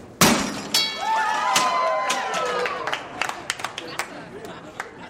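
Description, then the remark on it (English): The German environment minister strikes the bell of a carbon-busting machine with a hammer at a UN climate conference: a hard thunk sets off a bright, ringing bell tone that wavers and slowly fades, over a crowd's murmur, with scattered sharp clicks afterward. “As environmental ministers arrived, one of the Engos challenged them to grab a hammer and ring the bell of a carbon-busting machine, and got the German environmental minister to play along.”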